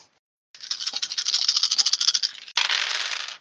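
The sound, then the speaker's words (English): Many dice are rolled for a perception test, clattering and rattling together in a dense, bright burst of rapid clicks for about two seconds, then a second shorter rush of rattling follows a brief pause. No one speaks. “Listen to all those dice.”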